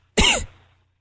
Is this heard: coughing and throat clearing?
yes